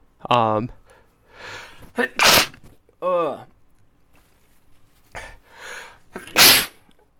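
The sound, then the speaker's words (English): Two loud, wet sneezes burst out a few seconds apart, each with a sharp breathy inhale before the explosive release, followed by a short voiced sound and some light shuffling. “Only here can you get two just perfectly solid wet sneezes that we will not edit out.”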